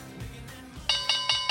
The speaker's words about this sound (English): Let's ring in the opening bell right here, right now